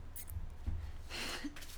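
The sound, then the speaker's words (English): A deck of cards is shuffled: short, quiet papery bursts of riffling and rustling, with a longer crackling flutter near the end and no one speaking. “So, I'm going to shuffle this deck”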